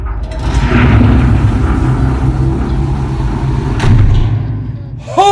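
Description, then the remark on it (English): A door opens with a single heavy thud amid a constant low rumbling background, and a voice briefly starts calling out right at the end. “Open up the door,”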